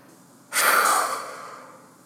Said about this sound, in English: Now, take a deep breath in through your nose. Feel the air filling your lungs and your chest, and even filling up your belly. Now, let out the air with a big puff through your mouth.